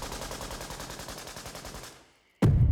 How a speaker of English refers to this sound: Then the gunfire came.